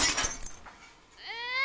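A loud clattering crash of thrown saucepans, plates and dishes smashing, several sharp shattering bursts in quick succession that fade out, followed by the high, sustained wailing cry of a howling baby rising up.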